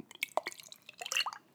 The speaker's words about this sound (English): Looking at the mix, I see lots and lots of little particulates in there, and I'm gonna pour it right now without anything, no spirit.